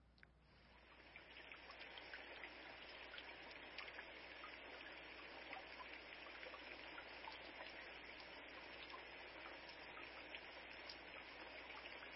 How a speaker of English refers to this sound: What do you hear? What do you see? Relaxing? Okay, yeah, that's something like people say they play it for their kids so they sleep at night. For me, when I hear rain, I hear optimism. My kids had no idea what that sound was